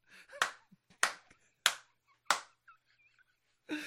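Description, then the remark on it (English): Four loud hand claps in a slow, even rhythm, each a sharp crack with a short tail, followed by faint chirpy sounds and a brief burst of noise at the end. “Guy's head here, my hands for clapping here.”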